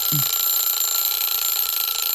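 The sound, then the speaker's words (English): A game timer buzzer blares loudly and continuously for about two seconds, a harsh, steady electronic drone with no talking over it. “Did she get kiss in before the buzzer?”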